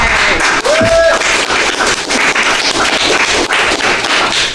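A crowd bursts into steady, loud applause, dense clapping filling the whole stretch, with a brief whoop or whistle rising early on and faint voices mixed into the noise.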